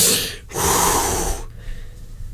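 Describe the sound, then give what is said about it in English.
A deliberate breath as a breathing technique: a short inhale, then a long, forceful airy exhale lasting about a second, trailing off into quieter breathing. No talking. “Take those breathing techniques.”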